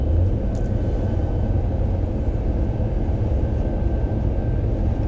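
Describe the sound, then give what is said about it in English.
A very large truck drives right alongside, weaving in and out, its deep, steady engine and road roar filling the space at a constant loud level with no pauses and no voices. “There's a very large truck right next to me, kind of weaving in and out.”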